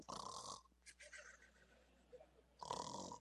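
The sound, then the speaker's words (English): A voice imitates loud snoring: two rough, rasping snore sounds, one at the start and one at the end, separated by a quieter stretch of soft breathing. “Now, I probably wasn't snoring, but I was breathing heavy, no doubt.”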